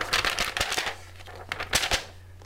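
Paper crackling and rustling, with a few crisp pops as a blank sheet of paper is snapped taut before a review synopsis is read, coming in two quick bursts separated by a brief lull. No one speaks.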